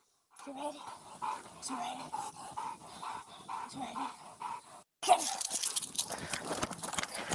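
A police dog pants hard and fast in a steady rhythm of quick breaths for several seconds while running, then a louder burst of rough, rushing noise takes over as it keeps moving.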